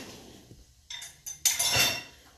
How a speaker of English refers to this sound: Now I'm loading the dishwasher.